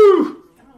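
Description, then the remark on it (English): A dog lets out one short whine that slides downward in pitch and quickly trails off into near silence. “my dog is being a pain in the ass, so I'll come back as soon as I can, but keep watching.”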